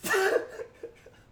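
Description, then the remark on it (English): A single loud, sharp sneeze bursts out, followed by a few soft, breathy sounds that quickly fade into quiet. “Bless you.”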